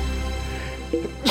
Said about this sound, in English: I'm going to sneeze.